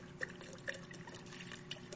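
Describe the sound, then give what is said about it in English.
Liquid pours steadily into a cup, a soft, continuous splashing trickle with a few brighter plinks, fairly quiet, with no voices over it. “So let's say this cup, that's your family. You're pouring into those guys.”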